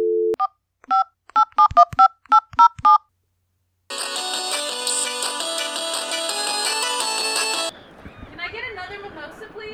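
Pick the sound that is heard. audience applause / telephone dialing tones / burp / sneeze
telephone dialing tones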